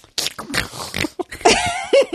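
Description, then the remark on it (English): A voice imitates a man loudly chewing salted wasabi cashews with his mouth open: a rapid string of wet, smacking mouth bursts with snorty, piggish grunts mixed in, fairly loud and continuous for about two seconds. “His mouth was not closed while he was chewing. Wait, hold on. Let me do it with mouth open.”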